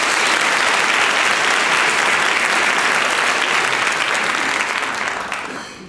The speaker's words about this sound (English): And if you can applaud when I do that one more time, ladies and gentlemen,